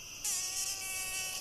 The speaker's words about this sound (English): Ow! Mosquitoes are finding us.